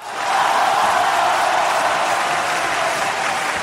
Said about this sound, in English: And I'm going to give you this round of applause.